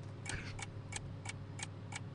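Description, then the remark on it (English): A clock ticks steadily, six crisp clicks at an even pace of about three per second, over a low background hum, with no voices. “Let's hear 5 seconds of ticking noise plus a correct jingle.”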